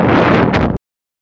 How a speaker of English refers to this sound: The sudden burst of noise there was actually the sound of me knocking that overpriced coffee onto the floor. I cut the bit where you could hear me howling.